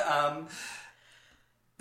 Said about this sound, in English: Oh, there we go. Oh, again. You're yawning again. Are you that tired? Apparently.